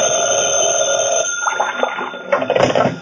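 A telephone bell rings in an office, a loud, steady metallic trill that swells into sharper bursts toward the end, with no one speaking.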